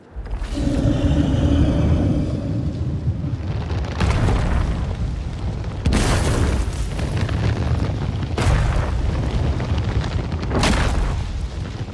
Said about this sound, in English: My God, like the trees bending over as it walks, the thumping of its feet. It is just the most majestic looking thing.